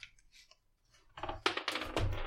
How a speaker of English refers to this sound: So to start, why don't we go ahead and each of you can roll that white dice.